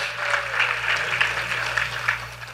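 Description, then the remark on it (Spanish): A crowd claps steadily, a dense wash of overlapping handclaps at an even level throughout, with a low steady hum running underneath. “Un aplauso one more time.”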